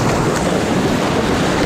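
A loud, steady roar of cold ocean surf breaking in small waves, a continuous wash of churning water with no voices, filling the whole moment without pause.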